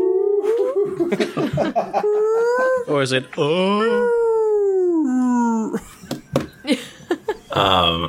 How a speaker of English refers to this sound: Some might say it sounds like a wail. A mournful, baleful wail.